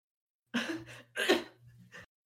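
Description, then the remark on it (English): Three short, harsh coughs spaced about half a second apart, fairly loud, with a faint low hum underneath and no talking. “And this time it's even shorter before it gets, coughed out.”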